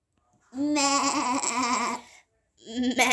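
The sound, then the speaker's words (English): A person imitates a goat with a long, quavering, nasal bleat lasting over a second, followed after a short pause by the start of a second wavering bleat. “I don't do the best impression.”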